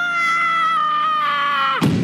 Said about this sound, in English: screamed in terror.